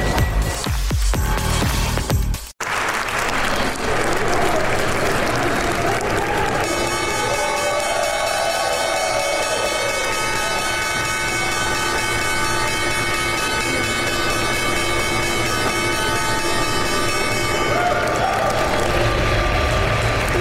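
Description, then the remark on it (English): The New York Stock Exchange opening bell rings loud and steady for about eleven seconds in the morning, a sustained metallic clang over continuous applause and crowd noise; the clapping carries on after the bell stops. “That was the opening bell.”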